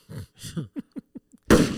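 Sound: gunshot sound effect drop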